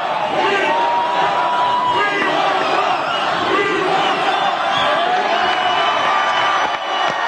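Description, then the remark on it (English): A large audience chants "We want Trump" and screams continuously, a dense wall of loud crowd noise with overlapping shouts and voices that never lets up. “That's what everybody's saying in the audience. I don't think you hear that back home. Everybody's screaming right now.”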